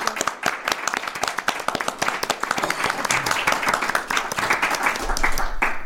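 A crowd applauds steadily, many hands clapping in a dense, continuous patter that holds fairly loud throughout the few seconds, with no voices standing out.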